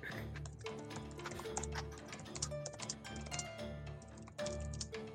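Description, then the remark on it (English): Rapid, continuous clicking of someone typing a chat message on a computer keyboard, fairly quiet, with irregular bursts of keystrokes over a steady low tonal hum in the background. “is currently typing. He's writing a message to me in the chat.”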